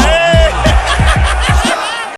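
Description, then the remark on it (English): A huge arena crowd at a UFC event chants "fuck Jake Paul" in unison, a loud, rhythmic roar of shouted syllables punching out in quick, steady beats over dense, continuous cheering and noise, before it suddenly cuts off. “Yo, So right now what you're seeing is the crowd saying fuck Jake Paul at the UFC event.”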